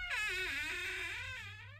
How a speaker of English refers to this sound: Love that sound effect. My boyfriend just walked in. It was like perfect timing for that too. With a squeaky ass bathroom door. You might want to WD-40 that while you're in the bathroom avoiding the long talker.